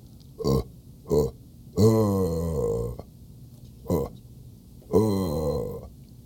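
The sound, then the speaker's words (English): A person imitates a deer buck grunt call, the first of three deer call noises made in order: a series of deep, guttural, burp-like grunts, two short ones, a long drawn-out one, another short one, then a final longer grunt, fairly loud. “we won't even put a time on it because you just have to make three call noises. Huh. Okay. When you are ready, please commence. Just go in order. Buck, grunt, bleat, and snort wheeze.”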